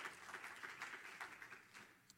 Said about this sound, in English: As Pastor prepares to come to the pulpit, would you just clap your hands one more time to Jesus and let him know how much you love him.